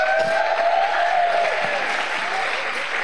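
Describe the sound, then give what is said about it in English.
An audience cheers and applauds together after a prayer, a dense, steady roar of clapping with high whoops and shouts rising above it, staying loud for the full three seconds. “Why don't we let out a massive cheer like the stadium?”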